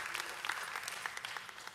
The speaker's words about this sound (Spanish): Y creo que podemos darle un aplauso a nuestro equipo técnico también, así que muchas gracias.